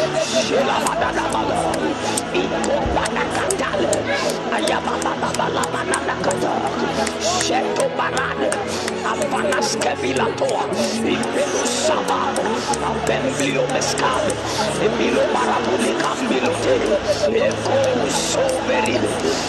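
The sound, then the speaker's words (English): A crowd of voices praying aloud at once in the name of Jesus, a dense overlapping babble that stays loud and steady throughout, with scattered sharp hand claps and shuffling mixed in. “In the name of Jesus, clap your hands and fire prayer.”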